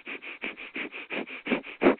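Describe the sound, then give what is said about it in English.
A quick, steady run of about a dozen sharp breaths through the nose in two seconds, moderately loud, panting like a dog, done as a breathing exercise using the abdominal muscles. The last few are stronger. No talking. “Now, once you've mastered that, you begin to do this quickly, almost like a dog panting, only through your nose.”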